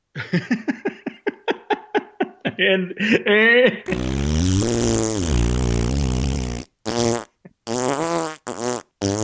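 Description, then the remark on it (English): A generic fart sound effect: a rapid series of short sputtering bursts builds into a long, loud, buzzing blast with a few choppy pops trailing off. “I had a fart sound effect, and I realized that my own manual mouth fart sound effects are better than the generic fart that I was using.”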